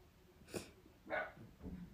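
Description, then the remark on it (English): A dog barks three times in quick succession, short sharp yaps, with faint breathy sounds between them and no one talking. “My dog's sorry.”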